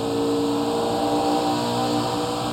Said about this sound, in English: But the vibration is amazing to be going this fast, and my body can feel the vibration of the car, but I'm not moving at all.